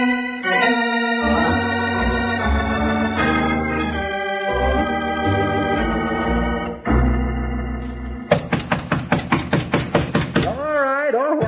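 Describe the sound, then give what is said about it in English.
Music plays, then a loud, rapid run of about a dozen sharp knocks on a door fastened with a chain pounds out in a steady rhythm before trailing off into a wavering tone. “Stop that infernal racket. Enough to wake the dead. You wait till I get this chain off the door.”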